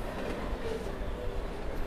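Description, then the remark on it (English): A train on a line over the Seine rumbles steadily as it comes to a stop, a low, continuous mechanical drone with a faint brief squeal partway through, even in loudness. “The train stops.”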